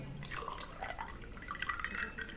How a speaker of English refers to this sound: prepare my white Zinfandel. On ice. All right, fine. I'll pour my own damn drink.